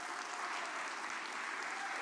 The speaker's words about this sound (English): Can I get a hand clap? Come on now.